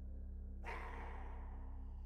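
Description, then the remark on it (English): After a brief pause, a large hound outside breaks into a harsh, sustained growl and snarl that rumbles on steadily, fairly quiet and with no one speaking. “And the wine was flowing as easily as the conversation, when they heard from outside a terrible growl.”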